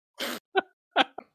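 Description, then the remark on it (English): One sharp, breathy sneeze bursts out loudly, followed by a few brief voiced sounds like sniffs or short vocal noises. “And I'm going to sneeze.”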